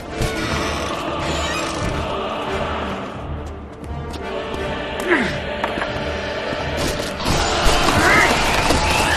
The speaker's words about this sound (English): I just like that the Ringwraiths are knocking on the door audibly.